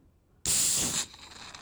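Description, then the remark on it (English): A beer can is popped open with a sharp crack, then a loud, bright hiss of escaping gas lasts about half a second before fading into a soft fizz. “Crack it off. Let's have a. Oh, here we go. Crack it off.”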